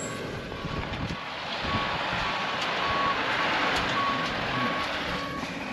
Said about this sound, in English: So I want to talk about the phrasal verb missed out once this truck goes by. It might be a little too loud.